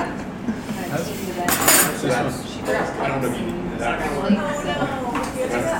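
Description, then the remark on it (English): Spoons clink and rattle against dishes in a quick, irregular series of bright metallic taps, with one louder clatter partway through, while people talk over the top. “No, I've got some spoons.”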